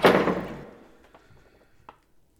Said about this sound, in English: Then Amina gets to her feet, runs to her bedroom, and slams and locks the door.